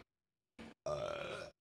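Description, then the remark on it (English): A short throaty hiccup-like sound followed by one long, loud, rumbling burp, voiced and steady before cutting off abruptly. “It was just a good burp.”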